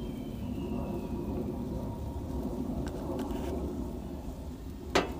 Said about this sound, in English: Sausage and shrimp, like I just said. On the grill. I'll probably hear it. It's like a lovely aesthetic, at least for me, to hear that sizzling grill sound.